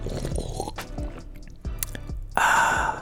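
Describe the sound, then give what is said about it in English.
Someone sipping and swallowing a drink: a few soft gulps spaced about half a second apart, then a breathy, refreshed exhale at the end. No one speaks. “Hold on, let me just take a sip of this freshness here.”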